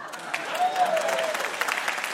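audience applause

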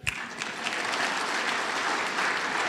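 people applauding

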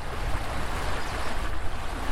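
rushing river rapids

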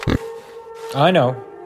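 pig oinking

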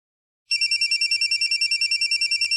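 cell phone ringing

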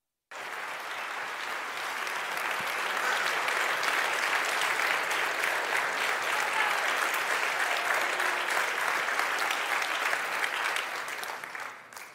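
audience clapping and cheering

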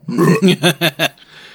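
belch

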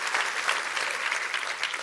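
audience clapping hands

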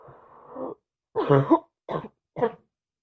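coughing

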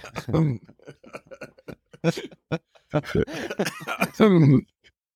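coughing fit

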